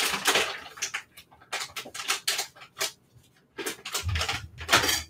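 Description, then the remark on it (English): About a cup of hard little sprouted pumpkin seeds pour and skitter into a blender in several bursts, a dry rattling patter with brief pauses, ending with a low thud as the pour settles. “I'm going to add like a cup of sprouted pumpkin seeds to my blender.”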